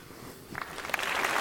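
Applause sound effect that starts with a few scattered claps and quickly swells into a dense, crackling patter of many hands, moderately loud with no voices.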